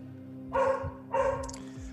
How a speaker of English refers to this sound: He barks at everything. He barks at his bone.